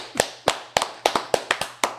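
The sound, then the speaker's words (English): A short burst of sharp hand claps, about seven or eight in quick, slightly uneven succession, like one person giving a round of applause, with a faint low hum underneath and no voices. “Yo, I want to give this nigga, whoever and wherever he is, a motherfucking round of applause.”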